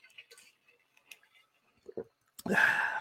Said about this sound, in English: Now, let me take a sip real quick.